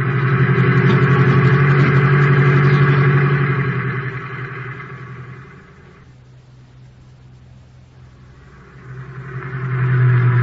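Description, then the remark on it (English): A taxi cab's engine hums steadily, fading to a low murmur midway through before swelling back to a full, throaty drone as it drives on. No voices. “Now quit making with the jokes and start making with that gas pedal.”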